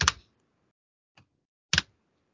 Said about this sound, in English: If you can hear him aggressively typing, that's how angry it is.